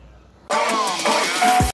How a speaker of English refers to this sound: Let's not get run over by this bus. That'd be a sad way to finish this podcast.